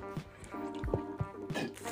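Soft sips of water and small liquid squishes, a few quick swallowing sounds clustered in the middle, over a faint steady hum with no one talking.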